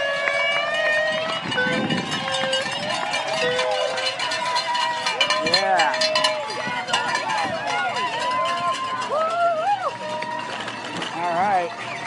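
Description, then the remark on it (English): A crowd cheers steadily at the finish line of a 111-mile ride, with rising whoops and shouts from many voices over a constant din, and a ringing cowbell-like clatter mixed in throughout. “You can tell the crowd gets pretty enthusiastic here right at the finish.”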